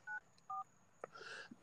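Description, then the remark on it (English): Two short, clear touch-tone beeps from a phone keypad as a number is dialed to call someone, evenly spaced, followed by a brief burst of clicks and rustling handling noise. “I'm going to call somebody else.”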